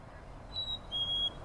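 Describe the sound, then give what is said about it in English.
A black-capped chickadee gives two clear whistled notes, a short higher one followed by a longer, slightly lower one, heard alone over a soft background hiss. “Here, okay, let's listen to the black-capped chickadee.”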